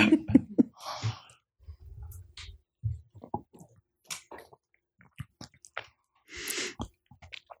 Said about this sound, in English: I know you're getting ready to take a sip. I'm going to take a sip. I'm going to let you take your sip and then I'll finish that conversation.